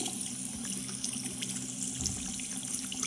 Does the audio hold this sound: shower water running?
yes